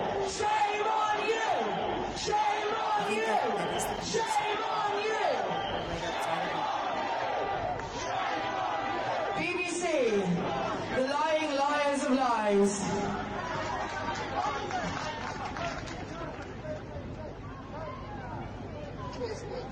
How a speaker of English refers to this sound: Yeah, in Britain, shouting shame, shame towards the BBC. I like this. This warms my heart, to be honest.